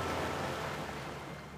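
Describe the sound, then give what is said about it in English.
A steady, broad rush of ocean surf washing in, full, easing off slightly toward the end with no voices present. “The current carried them to the calm sea.”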